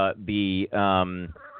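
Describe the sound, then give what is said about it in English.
Goose-like honking bird calls: two loud, drawn-out nasal honks close together, followed by a softer, shorter honk, with no other sounds around them. “Bird.”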